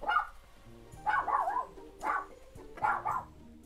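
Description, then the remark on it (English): A dog barks four times in a steady rhythm, short yappy barks about a second apart, representing Toto, Dorothy's dog in The Wizard of Oz. Clear, with no one talking. “Question number two, what is the name of Dorothy's dog in The Wizard of Oz? The dog's name is Toto.”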